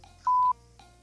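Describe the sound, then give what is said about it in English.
A single loud electronic beep, a steady mid-pitched tone lasting about a quarter second, from a battery charger holding quad batteries, with no talking and only faint background hum around it. “James Cadiz always charging. Beep. Like it's beep, quad batteries in there, wasn't it?”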